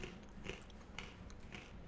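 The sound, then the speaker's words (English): Crunching of a crisp snack chip, with several sharp bites and chews repeating at an irregular pace, loud with no voices. “Crunch. Good crunch.”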